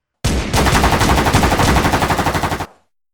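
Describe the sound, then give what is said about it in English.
A sustained burst of gunfire from rifles and automatic weapons, loud and dense, with rapid shots blurring together before the rhythm becomes more distinct near the end and cuts off abruptly. “Rifles, automatic weapons, and shotguns all ripped apart the tree trunks.”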